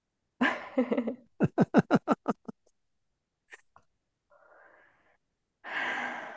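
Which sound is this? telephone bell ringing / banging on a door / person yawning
person yawning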